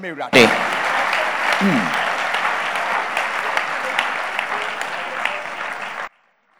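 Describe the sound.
A crowd bursts into loud, sustained applause, clapping their hands to appreciate the Lord, many hands clapping in a dense steady wash for about six seconds, with a brief voice at the start, before it cuts off abruptly.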